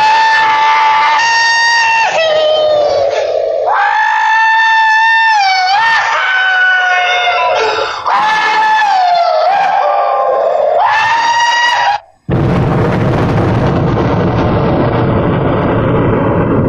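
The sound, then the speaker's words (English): From the film Dr. Strangelove, Major Kong rides an atomic bomb falling from an airplane: he yells and whoops loudly for about twelve seconds, his voice swooping up and down, then the bomb smashes into the ground and a sudden booming explosion erupts and keeps rumbling until the end. “And in it, it's one of the final scenes of the movie where this crazy guy, Major Kong, is riding an atomic bomb as it falls from an airplane and smashes into the ground to blow up, killing him and probably a bunch of people.”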